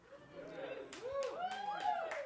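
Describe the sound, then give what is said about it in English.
An audience cheers and whoops, their voices rising and falling, while scattered claps break through as steady applause builds across the couple of seconds. “Thank you for applauding while I sip.”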